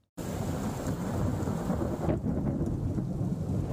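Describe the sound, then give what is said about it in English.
Deep, rolling thunder from a monsoonal thunderstorm over Southern California in the early morning on a Wednesday rumbles loudly and continuously, layered over the steady hiss of heavy rain, with no voices present. “Roaring booms of thunder and streaks of light cut across the Southern California sky in the early morning hours on Wednesday.”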